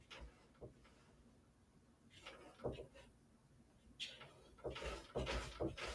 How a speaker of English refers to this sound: So, Derps is scratching at the door on the other side. I guess we can let Derps in.